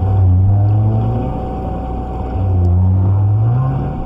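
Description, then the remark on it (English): Scratchy 1956 underwater tape recording of right whales, made by William Chaville of the Woods Hole Oceanographic Institute: long, low moaning tones with faint harmonics, one bending upward near the end, over a steady hiss and engine-like rumble. “The tape, made by William Chaville of the Woods Hole Oceanographic Institute, is a little scratchy.”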